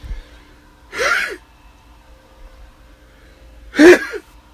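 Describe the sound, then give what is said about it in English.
Two sharp, breathy sneezes a few seconds apart, each a short loud burst with a gasping quality, otherwise quiet with no talking. “I'm about to sneeze, so apologies.”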